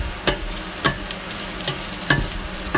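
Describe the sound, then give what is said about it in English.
Onions and rosemary, being prepared for Egyptian rice, sizzle steadily in a pan, a dense crackling hiss, with several sharper scraping clatters from stirring at irregular intervals. No one speaks. “I'm gonna put a little bit of rosemary in here and my onions that are getting ready for the Egyptian rice.”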